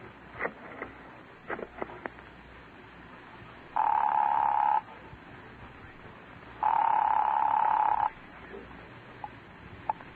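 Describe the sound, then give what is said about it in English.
A telephone in a telephone booth is dialed with a few quick clicks, then rings twice in long, steady electric bursts separated by a pause, heard clearly over faint background hiss with no talking. “I'm in a telephone booth by appointment for a call at exactly 11:30.”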